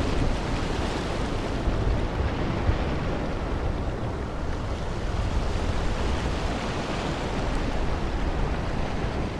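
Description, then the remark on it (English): A constant roar of wind and churning sea aboard a ferry from Tallinn to Helsinki, with gusts buffeting the microphone and a deep rumble underneath, steady throughout with no voices. “Now, one of the joys of sitting on the boat to, the boat from Tallinn to Helsinki is you never know who you're going to bump into.”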